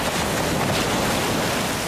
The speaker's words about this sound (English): Tyree, Hawaii of the North, surfer's paradise. Every year, these guys turn up to this beautiful, unspoilt wilderness to get battered to a pulp by tons of freezing cold salt water.